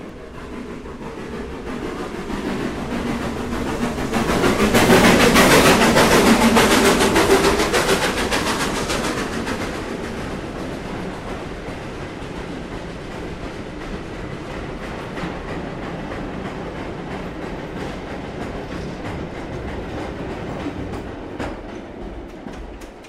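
freight train passing

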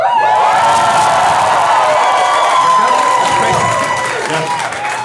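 audience cheering and whooping

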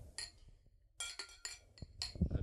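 glasses clinking

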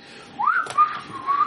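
person whistling a tune

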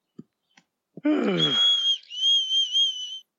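whistling

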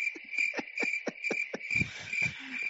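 crickets chirping

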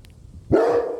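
dog barking

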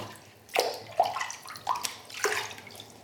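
bath water splashing

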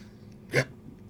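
burp

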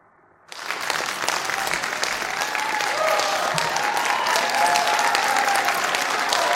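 rousing applause

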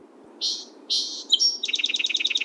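song sparrow singing

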